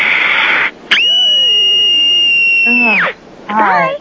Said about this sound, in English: I'm 8 years old, and here's my scream.